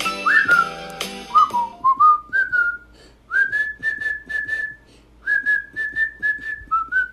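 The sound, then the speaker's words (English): A person whistles a bright, bouncy melody into a phone in short phrases with brief pauses, the tone clear but slightly thin. No one speaks. “Whistling's not a good idea into the phone, probably.”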